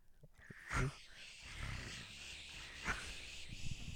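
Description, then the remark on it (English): A voice imitates cricket chirping with two short, raspy, buzzing chirps, spaced about two seconds apart, over a steady low rumble, with no talking. “Just make a cricket noise. I don't know. Make your cricket noise.”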